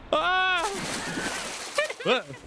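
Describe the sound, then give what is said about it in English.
A short cry rings out, then a loud splash as a person who lost their footing on a plank falls into the water below, its wash fading before a few brief vocal sounds follow. “As you begin crossing on the secondary plank up here, you feel yourself lose your footing and you begin to fall into the water below.”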